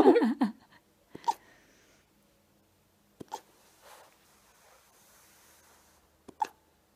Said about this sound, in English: All this attention about wolf pup hiccups.